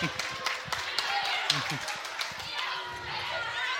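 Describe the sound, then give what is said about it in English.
An audience at Corinda State High School breaks into steady applause for the school principal, many hands clapping in a dense, continuous patter for several seconds, with some voices and cheering mixed in underneath. “Give her a round of applause for Mrs.”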